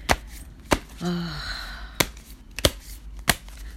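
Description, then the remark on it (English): Tarot cards being shuffled: five sharp, crisp slaps spaced irregularly over a few seconds, with a brief hummed voice in between, against a low steady background rumble. “Shuffling.”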